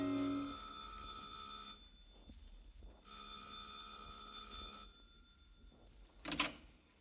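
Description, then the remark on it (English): An apartment doorbell on the second floor of a canopied apartment house rings twice in long, steady, buzzing bursts, each lasting nearly two seconds with a pause between, followed by a short sharp clatter near the end. “And on the second floor, ring a bell.”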